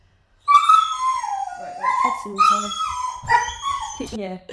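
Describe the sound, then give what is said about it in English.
A dog that has seen a cat lets out a loud run of howls and whining yelps, several drawn-out, wavering high-pitched cries that dip and rise, broken by short sharp yips. “Bloody hell! Madison, she's seen a cat.”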